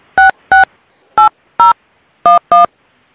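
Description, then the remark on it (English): Six short, loud phone keypad tones in quick succession, grouped in pairs with brief pauses between, like a number being punched in on a keypad, with no voices. “I put the number and in.”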